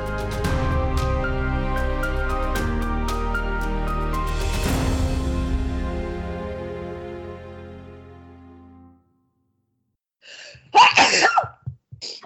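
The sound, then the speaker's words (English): A closing music bed fades out, and after a brief silence someone lets out a sudden, loud sneeze, with a sharp burst and a few trailing breaths. “Well, bless you. Wow. Bless you.”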